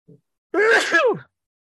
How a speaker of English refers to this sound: But the negative, and I'm going to sneeze here in a second. Excuse me.